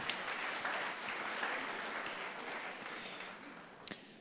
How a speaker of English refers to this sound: A round of applause for...